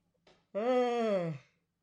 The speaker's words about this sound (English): Yawn break.